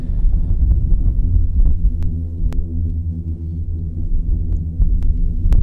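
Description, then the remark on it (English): A sand avalanche sliding down the side of a sand dune gives off a loud, steady low drone, a deep throbbing hum with layered tones caused by the vibrations of the tumbling sand, broken by a few faint ticks and no voices. “That's actually a sand avalanche, would you believe? That's caused by the vibrations of all the sand molecules moving as they tumble down the side of a sand dune.”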